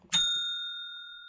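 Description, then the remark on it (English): A single bell strike with a sharp metallic attack, followed by clear, sustained ringing tones that slowly fade. Fairly loud, and heard alone without any talking. “So I'm going to hit the bell right now.”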